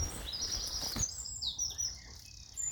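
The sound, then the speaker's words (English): Bright birdsong fills an outdoor scene in early spring, with several high, quick chirping phrases and trills repeating over a soft background of wind and rustling, fairly clear. “Amazing bird song.”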